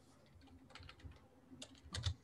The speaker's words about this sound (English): Sorry, I was typing in chat there to somebody.